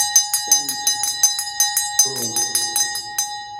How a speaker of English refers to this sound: With the ringing of this bell, we lift the veil twixt heaven and hell.